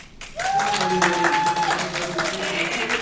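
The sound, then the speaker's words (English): A live audience votes by applause for Captain Boomerang, breaking into steady applause lasting about three seconds, dense clapping with a sustained whooping cheer riding over it. “All right, by a round of applause, which lamer?”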